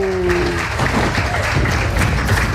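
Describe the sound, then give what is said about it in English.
A round of applause from a crowd in a clip from the film Thor: Love and Thunder: dense, steady clapping that fills the whole moment at a fairly loud level, with a brief tonal sound fading out at the very start. “that's possibly the only round of applause that film might get, but that is that's Thor Love and Thunder.”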